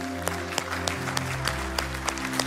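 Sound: audience applauding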